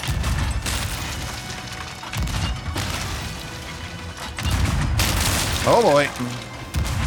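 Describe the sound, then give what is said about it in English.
Video game ship cannons fire in a ragged volley of heavy, booming blasts, several crashes over a few seconds with rumbling low end between them and a brief voice near the end. “See, now they have more cannons than us, and they're bigger and stronger.”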